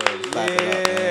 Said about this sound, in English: Clap it up. I love the energy. Yeah. I love it.